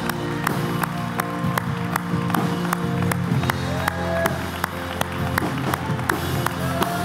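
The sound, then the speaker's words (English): An audience claps their hands together in a steady, rhythmic beat, roughly two claps per second, loud, with a crowd of voices murmuring and calling out underneath throughout. “We will hiss the enemy away by the clapping of our hands.”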